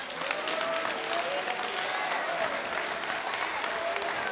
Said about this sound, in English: If you know God and blessed you, if you know he woke you up in your right mind, give me just 1 second of a clap praise for God.